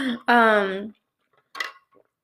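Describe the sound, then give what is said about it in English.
A glass clinks with a brief ringing, sliding tone, then after a pause comes a short, soft burst as someone sips water from the glass. No one speaks. “Sorry, guys, I'm gonna be drinking my water because I gotta get hydrated.”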